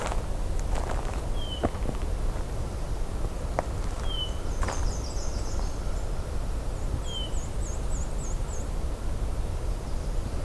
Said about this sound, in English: No, that's a hermit thrush. And thanks to Merlin, the app, I was able to look that up.